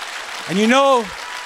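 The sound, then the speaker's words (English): An audience claps steadily in a dense, continuous wash of applause, while a single voice rises and falls in a drawn-out cry over the middle of the clapping. “Give the Lord a hand clap.”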